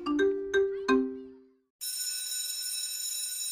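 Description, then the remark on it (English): Three bright bell tones strike in quick succession and fade, followed after a short pause by a steady, high, shrill ringing that continues loudly to the end. “Solidarity Now rings a bell!”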